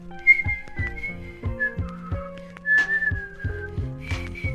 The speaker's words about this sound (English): Okay, that literally is annoying. What? It's annoying. Please stop whistling. I'm not whistling.